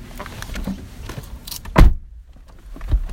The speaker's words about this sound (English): Made me close the frickin' door and open it again.